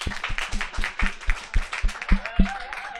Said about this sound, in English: Can we give you like an applause?